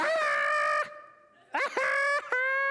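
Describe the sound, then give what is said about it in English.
A woman practising how to laugh naturally on cue imitates wild geese honking: one long, nasal honk, a short pause, then two more rapid honks in quick succession, loud. “I guess you're supposed to think of wild geese honking.”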